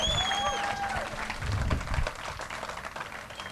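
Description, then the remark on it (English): An audience at an evening event applauds the event's sponsor, the Center for the American Experiment, steadily, a dense wash of many hands clapping that fills the whole few seconds at a moderate level, with a few brief tonal whistles or cheers early on. “Let's get a big round thank of applause.”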